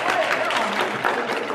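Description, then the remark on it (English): A church audience claps steadily at the lead pastor's urging, a dense wash of overlapping handclaps with cheering voices mixed in, holding loud and even throughout. “Come on, you guys, go clap.”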